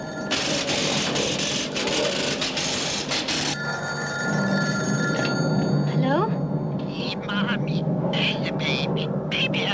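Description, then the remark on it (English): A telephone bell rings loudly in sustained bursts with a bright metallic trill, with background murmur and shuffling underneath. “Your phone's ringing.”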